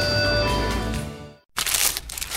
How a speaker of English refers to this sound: For all you foodies out there, I'm unwrapping a McDonald's steak, egg, and cheese bagel.